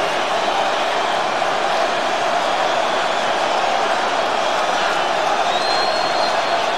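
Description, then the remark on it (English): A large WrestleMania crowd at SkyDome in Toronto roars, cheers and chants for The Rock and for Hogan in a mixed reaction, a dense, loud wash of many voices that holds steady for the whole stretch, with no single voice standing out. “Many of the crowd chanting for The Rock.”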